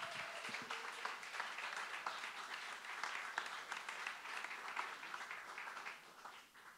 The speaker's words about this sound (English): Give a big round of applause for the best dressed man in the house, please, Mr. Jason Scott.